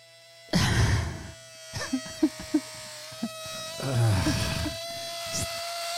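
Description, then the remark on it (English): Two breathy, sputtering bursts of hissing air made with a voice, imitating air being released from a hot air balloon, separated by a few short clicks, over a steady low electrical hum. “That's the sound releasing of an air, a hot air balloon.”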